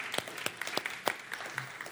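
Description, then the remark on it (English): An audience applauds to thank the men who have preached for four months, with a steady patter of overlapping handclaps, a few sharper claps standing out irregularly, at a moderate, even level throughout with no voices. “And applause is great, but you should totally go give them a hug, buy them dinner, whatever.”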